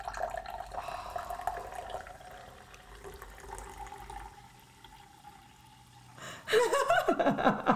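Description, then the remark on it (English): Liquid pours steadily with a soft, gurgling flow, then breaks into louder, lively bubbling and splashing near the end, fairly loud, with no talking, played as ASMR. “I'm going to have to like sit by you all night and what have just pour that? Bubbles.”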